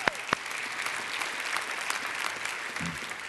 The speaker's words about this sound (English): Now, I know you're going to be able to do better than that because we have an online audience right now around the world. Would you welcome them? Let's give them a great hand clap.